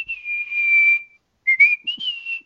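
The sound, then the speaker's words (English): A person whistles a clear, high tune: one long sustained note for about a second, a brief pause, then a few shorter wavering notes, fairly loud with no talking. “Because you can whistle and I can't?”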